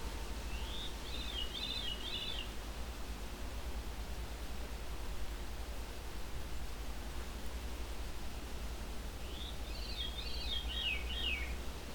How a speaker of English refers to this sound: There we go, veery. A veery thrush.